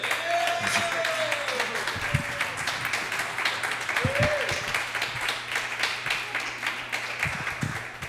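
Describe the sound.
Audience applause fills the whole stretch, a steady dense wash of many hands clapping at a constant loud level, with occasional whoops and murmured voices rising through the crowd noise.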